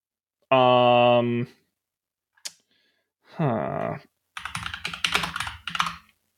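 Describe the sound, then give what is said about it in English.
Rapid clatter of keys on a computer keyboard for about two seconds, preceded by a couple of brief voiced sounds and a single sharp click. “My typing is not being cooperative.”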